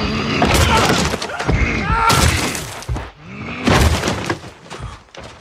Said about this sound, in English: Great, and now let's hear the giant's head smashing of the wall against that hapless archer.